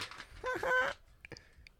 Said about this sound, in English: Hey, you might hear some seagulls out here.